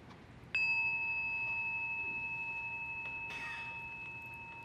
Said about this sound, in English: So when I ring the bell, it means the meditation is not over.